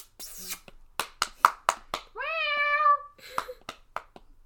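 A single drawn-out cat meow, clear, rises then holds for under a second, framed by a quick series of sharp taps or clicks before and after.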